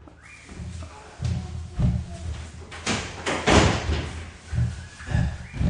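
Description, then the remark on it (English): A door thuds and slams repeatedly, a series of heavy bangs and rattles in uneven rhythm, loud against otherwise quiet surroundings. “just leave the door. Go back to mummy.”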